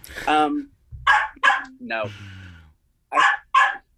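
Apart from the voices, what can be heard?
dog barking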